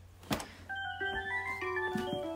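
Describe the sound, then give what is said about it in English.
A bright electronic jingle plays from a toy car, a tinny looping melody of steady synthesized tones with a few soft knocks underneath, moderately loud. “Oh, there goes that toy.”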